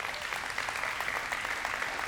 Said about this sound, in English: Oh, come on, clap on that one.